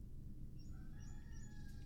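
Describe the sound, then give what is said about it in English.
A rooster crows in a long, drawn-out call that rises and holds, heard over a steady low rumbling background noise with no one talking. “Yo, I hate the sound of a rooster.”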